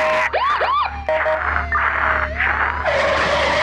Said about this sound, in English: That's right, I'm jamming into your car. I'm fucking crashing into you.